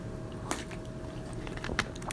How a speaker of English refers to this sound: I'm gonna need another water break real quick.